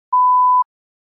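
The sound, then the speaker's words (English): A single steady electronic beep, a pure mid-pitched tone lasting about half a second with clean on and off edges, heard alone against silence, signalling when to begin speaking a response. “Please begin speaking after the beep.”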